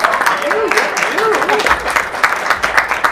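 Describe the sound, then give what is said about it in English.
An audience applauds with steady, dense clapping that fills the space, while a few voices call out briefly over it, welcoming a board member of Lutheran Braille Workers who introduces a guest. “let's give a warm round of applause to Priscilla”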